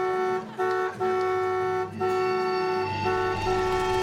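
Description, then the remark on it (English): An old truck horn blares loudly in long sustained blasts, broken by a few brief pauses, with a steady droning tone and no voices; the truck, sitting in a garage, honks loudly on its own. “Let me guess, you bought an old truck and thought you'd fix it up, but now it just sits in your garage and sometimes it starts flashing its lights and honking loudly on its own.”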